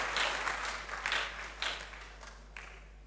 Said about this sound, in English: Praise the name of the Lord. Yeah, clap for yourselves. You guys are awesome.